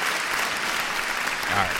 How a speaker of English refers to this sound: Where's the applause? Studio audience, please. Applaud this man. I don't know. It didn't happen. So what do I get claps for? You get claps for trying.